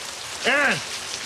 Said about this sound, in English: Rain. Is that what you call this? I like it.